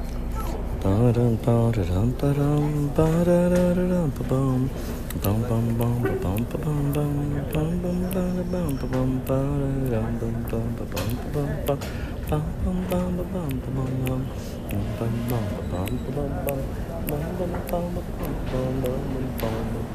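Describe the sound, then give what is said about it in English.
A steady voice sings a wordless melodic riff idea, sliding between pitches in a continuous phrase, with a low constant hum underneath. “Here's a riff idea that came to me as I was walking to the subway.”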